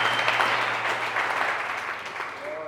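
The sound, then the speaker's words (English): A crowd claps their hands and shouts to Jesus, clapping steadily in a dense, sustained burst of applause, loud throughout, with faint voices and a low hum underneath. “Come on, if there's a blood-washed, a spirit-filled person in this house, just clap your hands and shout to Jesus.”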